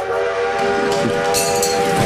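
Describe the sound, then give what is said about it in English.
A loud train whistle blows in one long, steady blast, its bright harmonic tone held for the full two seconds over a low rumbling background. “The whistles go woo woo.”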